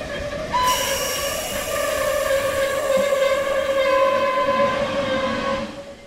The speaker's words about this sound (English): And look! Here comes a steam locomotive right now!